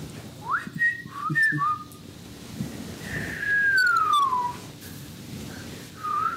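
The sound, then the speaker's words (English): A person whistles a patterned signal: a quick run of short rising chirps, then a long falling glide, then a brief final note, over faint outdoor wind noise. “What if you invented, like with someone, different types of whistles for codes for speaking to each other?”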